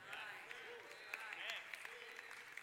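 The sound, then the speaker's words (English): An audience applauds steadily over talk of a boat, dense clapping with a few sharper claps standing out, while a voice briefly rises over the applause. “We clap over a boat, but now let me say this about that.”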